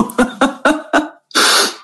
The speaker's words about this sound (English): I have a part of me that really needs to sneeze right now.